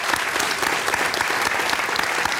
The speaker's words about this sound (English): So we are just out of time, but before we close, I'd like to thank UCLA, our co-presenter tonight, so a big round of applause for them for making tonight possible.